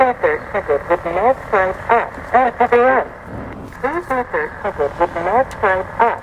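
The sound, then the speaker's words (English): An automated parking pay station voice at a pay meter in a parking garage gives instructions in steady, evenly paced phrases, sounding thin and slightly tinny as if from a small loudspeaker, with faint background hum. “As I pulled up to the pay meter, I was given clear and concise instructions by the pay station's automated message.”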